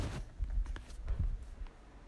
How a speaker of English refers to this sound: Oh yeah, they hear the waves now. You hear the waves?